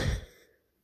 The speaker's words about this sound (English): I didn't yawn at all the whole day. But the moment I tried to do this, now I'm starting to yawn. Now the yawning is coming.